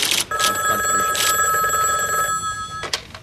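A telephone in a college dorm rings with a bright, warbling electronic trill, steady tones pulsing rapidly for about two seconds, then a brief gap before another ring begins. No voices accompany it.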